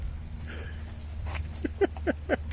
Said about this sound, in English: I think we're going to have to love and leave you there because he's now play fighting with the dog and the dog's going to shoot his arm off and I'm going to have to take him up to A&E.